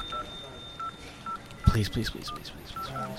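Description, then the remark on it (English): Short, evenly spaced telephone keypad beeps as a number is dialed, with a faint steady high tone underneath and a brief burst of someone talking partway through. The call is to the Massacre Radio station and reaches its voicemail. “Oh, it's ringing.”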